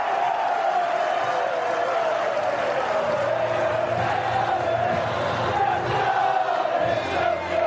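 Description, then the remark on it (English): A huge stadium crowd cheers at Wrexham's trophy presentation after a 3-1 win over Boreham Wood made them 2023 National League champions: one loud, unbroken roar for about eight seconds, with a sustained chanting tone running through the dense wash of voices and clapping. “Here's the trophy presentation.”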